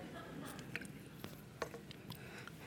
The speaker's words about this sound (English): I'll just take a sip of this and do it.